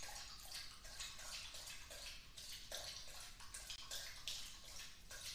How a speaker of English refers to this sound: By the way, if you hear that noise, that's literally a dog drinking water.